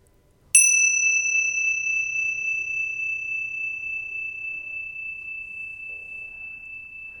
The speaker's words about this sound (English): And what we're going to do is listen to the sound of the bell and notice the sound of the bell moving through time.